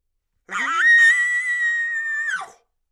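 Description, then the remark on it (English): A person imitates a short, quick bull elk bugle, as made by a rutting bull chasing a cow: a low grunt sweeping up into a loud, sustained high-pitched whistle that holds for about two seconds before dropping off abruptly, heard alone. “When they bugle, it's usually a super fast, quick bugle because they're chasing a cow.”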